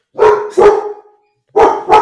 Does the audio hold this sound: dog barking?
yes